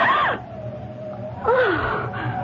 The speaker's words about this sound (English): As he passes a darkened doorway, he hears a gasp.